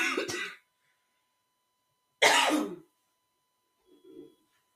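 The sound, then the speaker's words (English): Two sharp, forceful coughs a couple of seconds apart, fairly loud, followed by a softer throaty grunt, with no talking around them. “I don't know why I'm coughing.”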